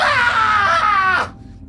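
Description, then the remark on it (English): A man lets out one loud, strained scream of pain, sustained and wavering for just over a second before cutting off abruptly into near silence. “This dude screams.”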